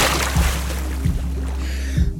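Water splashes and sloshes, with three heavy surges about a second apart over a constant rushing, churning wash. No one speaks.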